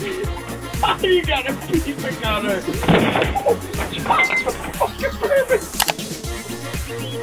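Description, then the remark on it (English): A man knocks on a door with a series of sharp, uneven, loud knocks and bangs, mixed with a busy, noisy background and some indistinct voices. “After having one too many drinks, one of the guys decided to knock on the door with style.”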